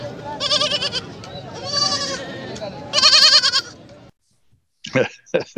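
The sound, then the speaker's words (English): A goat on the loose in Chatham Township, New Jersey, bleats three times in loud, wavering, quavering cries, separated by short gaps, followed after a pause by a few brief, choppy sounds. “There has been a peeping goat on the loose.”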